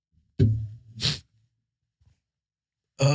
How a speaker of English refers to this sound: No, I got the sniffles. Yeah, I'm totally stuffed up right now. It's insane. Ooh, fighting off a sneeze.